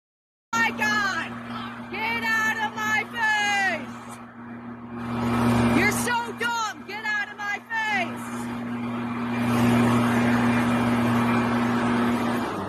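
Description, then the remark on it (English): A leaf blower's steady motor drone runs for the whole stretch as someone blows leaves out of the road, its hum swelling slightly toward the end, while raised voices shout over it in bursts. “So this person is trying to leaf blow, get the leaves out of the road, and this lady is blocking her.”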